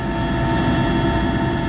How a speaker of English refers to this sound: A group of about 10 of us got onto these 2 aging Ukrainian military helicopters, and we flew for about an hour, hugging quite close to the line of control, flying very, very low.